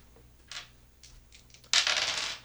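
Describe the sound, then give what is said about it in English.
Dice clatter onto a hard surface: a few sharp, separate clicks, then a loud, sustained rattling tumble that runs to the end. No one speaks. “Roll.”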